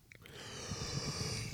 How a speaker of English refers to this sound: Yawn. I have this disease where, like, whenever I try to sing or read out loud, I'll start yawning.